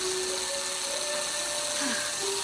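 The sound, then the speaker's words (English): A two-directional power drill, run backwards to turn a car's speedometer numbers down in a scene from the film Matilda, runs steadily throughout, a loud, continuous motor whine with a droning hum that briefly dips and shifts in pitch near the end, with no voices. “Two-directional drill. You run it backwards, the numbers go down.”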